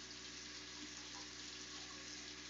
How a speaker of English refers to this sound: Alright, so everybody except for us, so basically just you two, you hear this strange whooshing sound, like rushing water, coming from behind you.